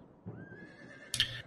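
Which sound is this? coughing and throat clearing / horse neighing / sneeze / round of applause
horse neighing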